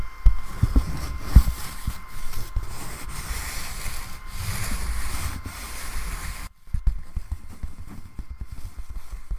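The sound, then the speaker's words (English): Dry, papery scratching strokes on a piece of paper rasp in an uneven rhythm, with soft low thumps mixed in; the texture thins out abruptly partway through before the scratching resumes more faintly. No one speaks. “Obviously you can scratch various different objects, but this is the same piece of paper if I'm attempting to scratch piece of paper.”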